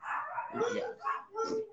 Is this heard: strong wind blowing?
no